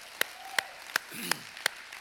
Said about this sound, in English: Man, give it up for all of them. Come on.